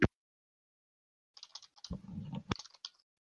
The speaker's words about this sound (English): The sounds of privy information. Furious typing.